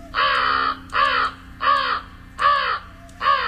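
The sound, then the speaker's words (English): An American crow caws five times in a steady, evenly spaced series, each call harsh and loud, with a faint low hum underneath. “Here's the American crow.”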